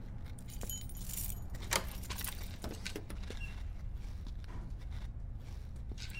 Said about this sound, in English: Got a security door coming up. No way of getting through that without... There's keys in the door.